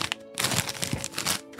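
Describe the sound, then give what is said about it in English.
A sheet of paper is rustled and shaken by hand at a desk as the sound effect for reading a listener letter, in a steady stretch of crisp, crackling bursts lasting about a second, with no voices, then falls quiet. “that is literally him with a piece of paper going like this.”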